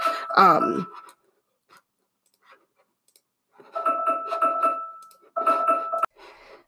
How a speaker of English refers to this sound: Okay, sorry about that little snippet of beeping there. Got that handled.